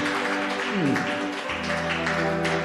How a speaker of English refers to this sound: Someone give the Lord a clap of faith.